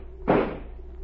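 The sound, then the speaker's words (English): A single sharp gunshot blasts open the lock of a locked door while a fire spreads, a loud crack with a short rumbling decay, heard alone over a faint steady hum with no voices. “Stand away from the door. I'm going to shoot the lock.”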